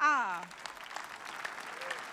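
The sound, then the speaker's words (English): A church audience breaks into steady, dense clapping for Jesus Christ that continues to the end, following a brief voice sliding down in pitch at the very start. “That clap and is not enough for my miracle working Jesus.”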